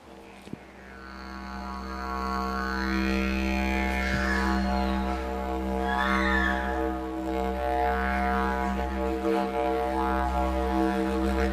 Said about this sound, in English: would you mind just playing a few notes of what a didgeridoo sounds like?